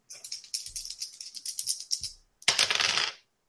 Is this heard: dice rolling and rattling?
yes